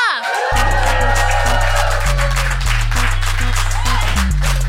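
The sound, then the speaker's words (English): A comedy show audience cheers, whoops and applauds loudly and continuously as the comedian Sikisa is welcomed to the stage: a dense wash of clapping over thumping, bass-heavy music that kicks in after a brief opening whoop. “Whoop and cheer and welcome to the stage, the incredible Sikisa!”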